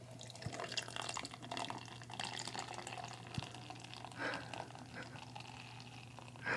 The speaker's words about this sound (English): We're pouring this right over the equipment, so it's okay.